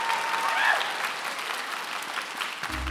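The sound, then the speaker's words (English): A crowd claps steadily for about three seconds, a dense, even patter of many hands with a few faint whistles or cheers rising briefly near the start. “Ladies and gentlemen, please give it up for”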